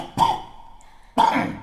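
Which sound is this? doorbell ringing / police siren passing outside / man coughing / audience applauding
man coughing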